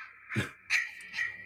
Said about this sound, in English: that's my notification sound. Let me turn that down. That sounds like the ringtone I used to set for one of my ex-girlfriends.